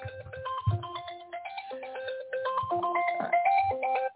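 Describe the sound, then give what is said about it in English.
A phone ringtone for an incoming call plays a bright electronic melody of quick tonal notes with a steady beat, loud, running alone without any talking before cutting off abruptly. “And Ron's calling me.”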